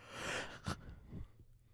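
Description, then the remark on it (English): A breathy yawn: a long airy inhale swelling up, a brief sharper gasp in the middle, then a lower, softer exhale that fades out. No talking. “You also yawned.”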